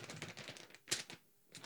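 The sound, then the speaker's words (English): Paper crinkles and rustles in a quick burst of dry, crackling handling noises as a sheet is pulled out to be read, with one sharper snap near the middle before a brief pause and a final rustle. “Well, no, it's just me wrangling the paper to pull out to read the official.”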